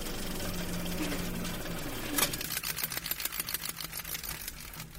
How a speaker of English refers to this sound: Or is it just the sound of a reel of film flickering through a projector?